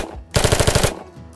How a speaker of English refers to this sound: And early in the morning on July 20th, local authorities have a major shootout at the Barrow.